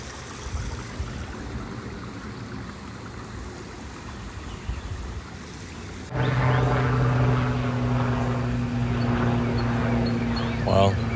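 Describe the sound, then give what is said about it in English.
A helicopter drones overhead with a steady, throbbing engine hum that grows louder partway through, heard at the Tai Chi Bridge by a pond, set against outdoor background noise, landscaping equipment and occasional chirps of a loud cardinal. “There's a helicopter, some other landscaping equipment, a really loud cardinal.”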